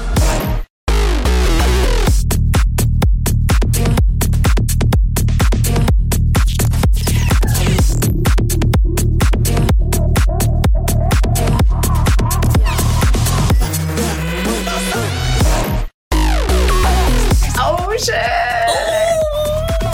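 A loud electronic dance music remix with a fast, pounding beat and heavy bass, wailing pitched vocal-like sounds over the top, and two brief silent drop-outs before the track surges back.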